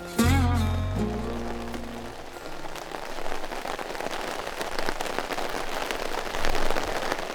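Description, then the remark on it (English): Steady, heavy, cold rain pours down on a militia's tent camp in Pennsylvania in a dense, hissing wash with scattered louder patters, continuous, following a brief low tonal hum at the very start. “A cold rain is dousing the Pennsylvania Volunteer Militia's camp.”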